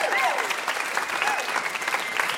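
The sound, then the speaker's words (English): A crowd applauds steadily for VIP guest Julie Klausner, a dense wash of clapping hands that holds at a fairly even level throughout, with a few brief whoops or cheers rising above it. “How about a huge round of applause for our VIP, Julie Klausner?”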